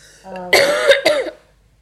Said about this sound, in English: Sorry. One moment. I'm going to blow my nose.